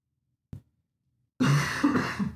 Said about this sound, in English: I'm drinking Red Bull Cola again, and I guess it makes me cough, because I'm pretty sure I coughed on the last show, or made me phlegmy or something, and now I'm coughing again. Could be the cinnamon or the one of the natural flavors in it.